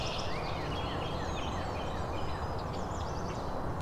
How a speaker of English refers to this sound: That really throaty song. And the chipper call. So the northern cardinal and scarlet tanager singing. Cardinal is louder.